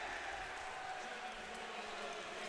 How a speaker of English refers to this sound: And a bit of a Bronx cheer from the Northern student section.